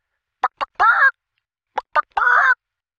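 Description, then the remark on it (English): A person mimics a chicken's cluck, twice over: two short clipped clucks followed by a longer drawn-out squawk, loud, with a brief pause between the two sets. “For example, you can make believe that you're a chicken. Like this.”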